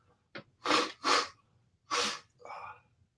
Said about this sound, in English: Give me 1 second. Let me blow my nose. Sorry, y'all. Sorry.